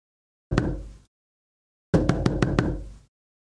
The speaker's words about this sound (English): Okay, just a knocking sound effect. I'm not really sure what that one was about.